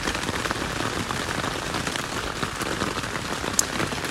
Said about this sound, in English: And then the last quote that I'm going to read and probably end it off, because this rain is getting pretty hard and I don't actually know if you can hear me that well.